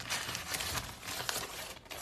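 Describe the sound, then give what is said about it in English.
Paper crinkles and rustles continuously, with sharper crackling bursts scattered through, as leftover scooped-out papaya is wrapped up in it by hand; no one speaks. “I'm gonna wrap it up with this paper. Wrap it right up.”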